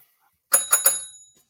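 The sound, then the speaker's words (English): A judgment bell sound effect rings three times in quick succession, bright, with sustained metallic overtones that fade out over the following second. No one speaks. “Hit the judgment bell.”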